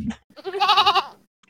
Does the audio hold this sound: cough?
no